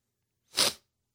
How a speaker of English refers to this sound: That sneeze, like, ruined me.